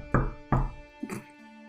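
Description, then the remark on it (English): Two firm knocks on a door, a homemade sound effect, evenly spaced about a third of a second apart, followed by a softer scuffing thud, with no voices. “A year later, after the ball, a timid knock sounded on the door of Rachel's parents' home.”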